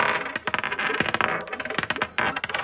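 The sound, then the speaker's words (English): Dice are rolled and rattle and clatter across a hard surface in a rapid, dense burst of sharp clicks, fairly loud, with a brief pause before they are rolled again in another flurry of tumbling knocks. “I'm going to take these dice away. No, let me roll again.”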